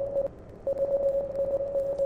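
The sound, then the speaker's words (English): Morse code beeps in a steady mid-pitched tone: a short burst, a brief pause, then one long unbroken tone, all over a faint radio-like hiss. “Morse is the messenger.”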